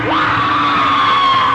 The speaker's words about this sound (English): But the noise. The people screaming.